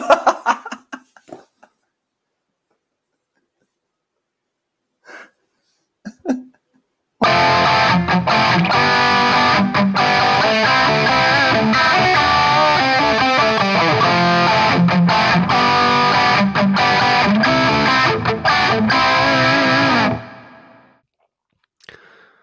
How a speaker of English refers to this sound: Sorry, my computer lagged. There's a bit of a lag time there. That's on me.